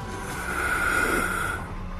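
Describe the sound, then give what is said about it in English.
A voice imitates a single long indrawn breath from the character Ekphelia, a steady, breathy hiss that swells slightly in the middle and lasts about two seconds, with no talking. “And Valkos, that seductive speech of yours, what you hear is an indrawn breath from Ekphelia.”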